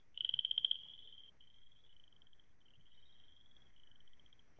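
Chorus frogs call in a springtime wetland in a steady stream of high, rapid pulsed trills, opening with a crisp burst and then carrying on in a continuous buzzy chorus. No voices are heard.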